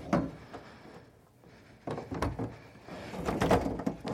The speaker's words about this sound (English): Changing the configuration so the three chairs are back to back in a tight triangle facing away from each other.